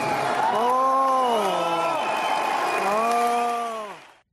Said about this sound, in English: And you could hear the crowd reacting with disappointment